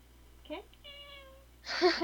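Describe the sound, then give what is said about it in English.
A cat meows in tuneful, drawn-out tones as if singing a song: a short meow, then a long, steady held note, and finally a louder, strained meow. “A cat singing Old MacDonald.”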